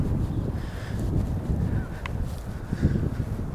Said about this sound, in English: And thinking now, as I'm looking at these geese flying ahead of me in a V, that maybe if you are one of the geese in the back, you can't really change where the lead goose is.